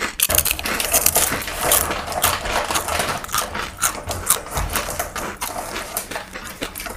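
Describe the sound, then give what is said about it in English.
Loud, continuous crunching on rosemary and olive oil crackers, a dense run of sharp crisp snaps and crackles that carries on for several seconds with no talking. “I'm about to dip in with my rosemary and olive oil. Crunch master.”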